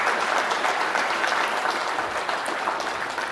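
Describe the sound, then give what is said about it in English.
An audience applauds steadily to thank a local missionary who has just spoken, many hands clapping in a dense, even wash of sound that holds at a fairly strong level throughout, with no voices standing out. “Let's give our hand clap.”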